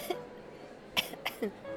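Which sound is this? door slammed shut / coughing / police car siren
coughing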